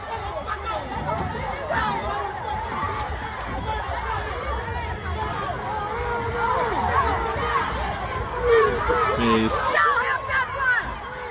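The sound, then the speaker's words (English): A dense crowd of many voices shouts and chatters continuously, a loud overlapping babble of yelling that swells slightly near the end with a few sharper cries. “Listening is worse than watching because you hear everyone yelling in the background.”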